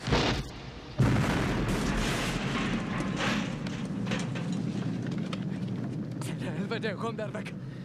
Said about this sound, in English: One of the men pulls the pin on a grenade, but it slips out of his icy mitts and lands behind him. The pilot frantically tries to find the grenade in the snow, but it explodes, killing him and destroying their helicopter.